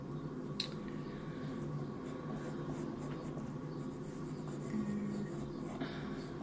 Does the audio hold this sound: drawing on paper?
yes